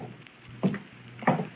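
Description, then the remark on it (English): Two dull, muffled footsteps thud from upstairs about half a second apart, low and heavy against a quiet background hiss, with no voices. “Footsteps. Someone's upstairs.”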